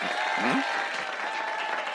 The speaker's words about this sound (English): Okay, people, let's have a round of applause for the real comptroller.